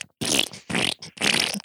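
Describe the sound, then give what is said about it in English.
A voice imitates a fart with three loud, buzzy bursts in quick succession, each lasting under half a second, separated by brief pauses. “So whenever he walks, it just sounds like... Just a fart, you know, sounds like a fart.”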